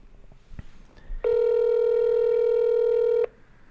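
A telephone tone sounds: one loud, steady electronic beep held at a single pitch for about two seconds, after some faint clicks and rustling, with no talking.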